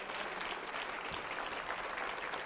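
An audience claps together to thank God for the word during a sermon, a dense, steady wash of applause, many hands blending into a loud continuous patter that holds evenly throughout with no voices standing out.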